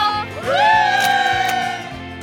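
An outdoor crowd on a March day cheers, led by a loud whoop that slides upward and then holds a steady high pitch for over a second above a dense bed of crowd noise.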